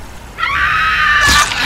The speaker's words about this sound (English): Her scream was cut short as its teeth sank into her neck.